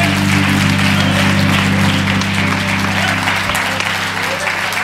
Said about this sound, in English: Would you clap your hands and praise him?